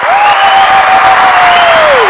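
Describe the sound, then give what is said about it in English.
Loud, steady applause from a crowd for the show's team fills the whole clip, with a sustained whistle-like tone gliding slightly upward then dropping away at the end. “Everybody, round of applause for my team.”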